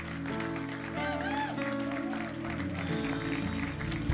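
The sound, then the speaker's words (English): An audience applauds the people who raised their hands, with steady, continuous clapping for about four seconds, mixed under a sustained voice and tonal, music-like sounds. “Keep clapping for them.”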